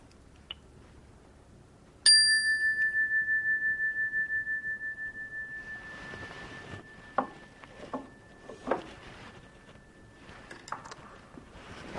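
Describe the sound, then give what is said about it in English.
A single meditation bell is struck once at the end of a meditation practice and rings out clearly, its pure tone shimmering and slowly fading over several seconds, with faint background noise and a few soft knocks afterward. “And opening your eyes to the sound of the bell.”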